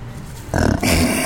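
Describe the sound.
A person imitates a lion's roar: after a quiet start, a rough, low growling voice bursts in and swells into a loud, harsh, breathy blast that holds to the end.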